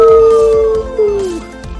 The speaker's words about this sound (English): And in the background, you hear a wolf go, ow!